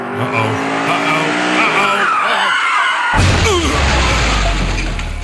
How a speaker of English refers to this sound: Do you like that crash in the car thing? I like to crash the car. I think it's pretty cool.